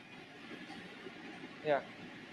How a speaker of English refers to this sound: Okay, there is a fan going on, you know. So someone has to stop their fan. Someone stop your fan. Awaaz kahan se aa raha hai itna?